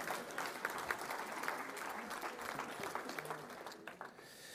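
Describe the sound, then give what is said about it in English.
Steady audience applause, a dense wash of many hands clapping at an even, moderate level throughout, thinning slightly toward the end. “Don't feel you've got to applaud everything, because you've all had a long day.”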